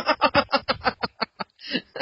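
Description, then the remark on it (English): A pet bird behind a closed door calls out in a rapid string of about a dozen harsh, muffled squawks, moderately loud with no one talking. “And you may hear the bird also, although he's behind closed doors, he may yell, so just warning everybody.”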